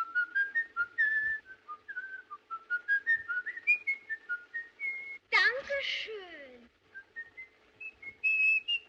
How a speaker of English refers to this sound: And that is not to mention how, in Fritz Lang's M, compulsive child murderer Hans Beckert whistles Grieg's Hall of the Mountain King.